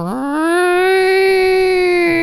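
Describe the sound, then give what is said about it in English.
A person imitates a cat's mating yowl: one loud, drawn-out wail that rises briefly in pitch at the start, then holds a steady, strained, nasal tone for about two seconds. “Why do animals when they fuck make atrocious sounds? Cats are like.”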